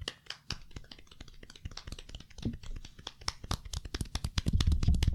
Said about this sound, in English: If you enjoyed the show, this is a golf clap. I like I it a lot. I hope you can hear that.